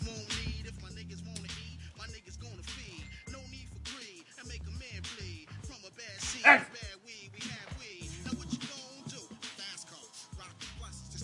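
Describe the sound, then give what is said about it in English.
A dog barks and yips in short, irregular bursts over several seconds while someone tries to take a hand towel from it, with a sharp slap-like hit partway through and muffled movement in the background. “Naughty dog.”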